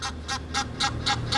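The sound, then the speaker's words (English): A large bird gives a quick series of six harsh, honking calls in a steady rhythm, fairly close and clear, over a low outdoor rumble. “Oh, look at all these birds.”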